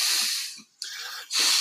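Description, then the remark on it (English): Someone imitates a basketball player's heavy, snorting Tony Soprano-style breathing through the nose: three loud, airy, hissing huffs in quick succession with a brief pause between them and no talking. “But he was doing the Tony Soprano breathing through his nose.”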